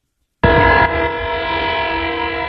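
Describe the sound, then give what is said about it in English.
A train on the tracks sounds a loud, sustained horn as a warning not to cross the tracks; it starts abruptly and holds steady for a couple of seconds, overpowering, with no voices. “And then this one, this guy, kind of a warning not to cross the train tracks.”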